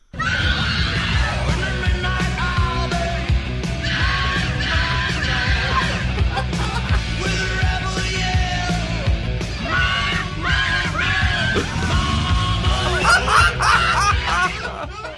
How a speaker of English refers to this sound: We decided to remix it right here. Here's a brand new version. Let's play the Rebel Yell